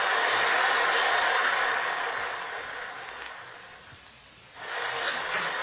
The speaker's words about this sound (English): There's the house. And the rain. Look at the rain. Yes. Red rain.